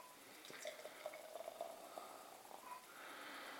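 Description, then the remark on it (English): A black beer pours into a glass with a soft gurgle and splash, ending in a steady fizzing hiss as an extremely foamy tan head rises. The sound is quiet, with no one talking. “That pours a nice black colour. It's got a 1-2-3 finger, extremely foamy tan head.”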